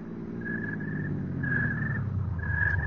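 A car engine rumbles steadily nearby as a vehicle drives up, with a thin high whine rising three times over the low motor drone.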